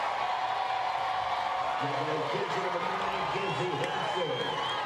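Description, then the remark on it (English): A steady roar of a large stadium crowd cheering at a Sooners game at 2 o'clock on a Thursday afternoon as Kinsey Hansen comes to bat, dense and continuous, with individual voices shouting and whooping above the wash of noise midway through. “If you wondered what the crowd would look like or sound like at 2 o'clock on a Tuesday afternoon, there you go.”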